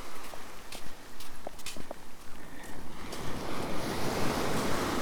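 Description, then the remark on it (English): Surf rolls onto Pendarrow Beach as rain begins, a soft wash that swells into a louder, hissing break partway through, with wind noise and a few light crunching steps. “Crossed over onto Pendarrow Beach.”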